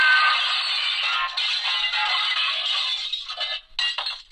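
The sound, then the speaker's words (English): A broken glass sound effect played from a sound effect machine: a loud, bright crash followed by several seconds of high tinkling shards, a short pause, then one last burst of clinking. No one speaks. “I don't know if you could tell, but that was broken glass. My sound effect machine.”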